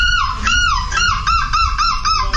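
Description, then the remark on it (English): A contestant from the Netherlands who won a seagull impression contest, wearing a seagull costume, imitates a seagull: a loud, high, nasal squawk rises and falls, then breaks into a quick run of five or six short, arched yelping calls, with no talking. “So, let's see who can do a better seagull impression.”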